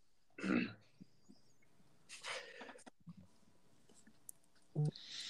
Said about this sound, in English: Do you have to yawn right into the mic?